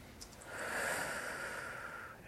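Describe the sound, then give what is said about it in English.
An audience at a presentation draws one long, deep breath together, a soft airy rush that swells and holds for about two seconds before easing off, with no talking. “For you, I'd like you to start, and ideally for the rest of this presentation, breathe incredibly deeply. So let's all do it together.”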